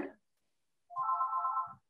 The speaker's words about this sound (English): That sounds very much like an old-fashioned phone.